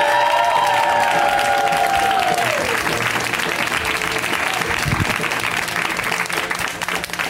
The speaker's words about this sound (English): Let's hear it right now. Already a round of applause, and keep it going for Iffy Wadaway. Give it up for Iffy.